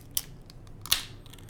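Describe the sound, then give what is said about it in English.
A can of Ecliptic Brewing beer cracks open: a faint metallic click, then a sharp pop followed by a short fizzing hiss that quickly fades. No one speaks. “Might as well crack one. Yeah. Crack it. Let's hear it.”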